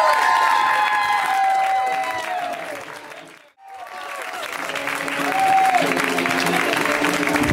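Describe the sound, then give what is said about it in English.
A comedy-show audience claps steadily for comedian Kyle Kinane, with whoops and high cheering voices riding over the dense applause, which briefly drops out halfway through before swelling back to full loudness. “So y'all start that clap, create that safe space as I do for Mr. Kyle Kinane.”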